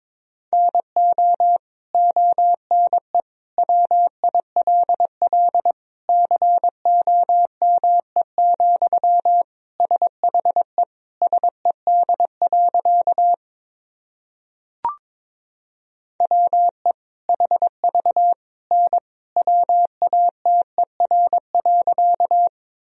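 A single steady mid-pitched tone keyed on and off in rapid dots and dashes, Morse code sentences built from the top 100 words and abbreviations, sent at about 22 words per minute, broken by a short pause and a faint click midway.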